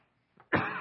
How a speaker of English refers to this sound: Sorry, y'all. It's just the enemy don't want me to finish this sermon because I'm starting to cough.